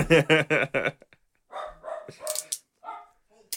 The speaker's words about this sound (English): And in the background you have our studio dog Jeppe. Who doesn't know how to act in a goddamn recording studio.